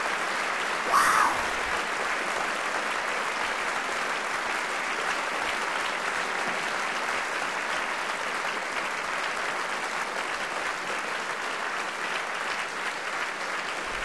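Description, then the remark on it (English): An audience applauds in a dense, steady wash of many hands clapping, holding at a fairly even loudness for about fourteen seconds without letting up. “Then, a crescendo of applause.”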